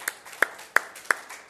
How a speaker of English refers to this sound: And, of course, we are here in the award-winning Edmonton Public Library, our host today. So would you give a round of applause for everyone who's with us today?